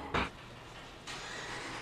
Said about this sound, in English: Kent is now moving this truck so that Josh can try this.